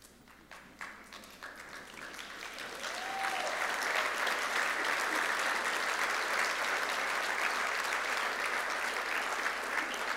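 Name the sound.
audience clapping and applauding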